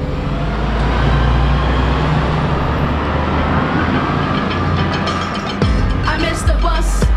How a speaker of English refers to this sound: Stuck on a bus somewhere between East Oakland and Lake Merritt